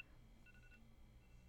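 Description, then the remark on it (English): A wake-up alarm going off, a phone ringer used as the morning alarm: faint, steady electronic tones with a short higher beep pattern over a low hum. No one speaks. “If I had a nickel for every time that alarm went off, I would have a nickel every single day.”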